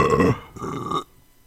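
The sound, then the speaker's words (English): Two loud belches in quick succession, a short deep one followed by a longer rumbling burp, with no talking around them. “Oh, quit belching, you're disgusting.”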